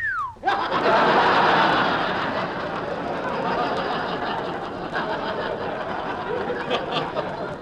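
A quick falling wolf whistle, whistling at a girl, rings out at the start, then a large crowd bursts into loud, sustained laughter that carries through the rest.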